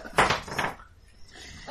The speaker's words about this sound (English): My dice is over there, can I borrow yours? Your dice. I'll just roll it for a sec.